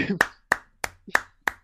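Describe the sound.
A single person claps five times at a steady, brisk pace, each clap sharp and close, with a faint murmur of a voice between the first few claps.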